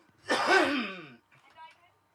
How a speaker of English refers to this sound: Excuse me, everybody. I got a cough.